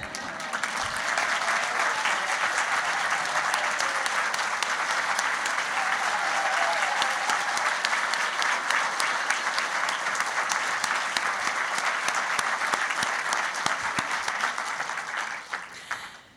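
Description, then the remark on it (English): A large audience at an evening program in Seattle breaks into sustained, loud applause for three honourees asked to stand, thick and steady clapping with a few cheers, lasting about sixteen seconds before tapering off at the end. “will you three stand so that we can applaud you wildly?”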